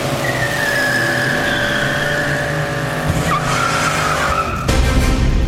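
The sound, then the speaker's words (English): A car engine roars as tyres squeal and skid loudly and continuously, the screech rising and wavering before the vehicle speeds away, with no talking. “Right, let's hop into another car and go somewhere else.”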